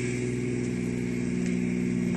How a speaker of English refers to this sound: He steps on the gas and takes off across the bridge.